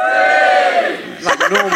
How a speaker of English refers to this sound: Give us a cheer if you've been in a helicopter.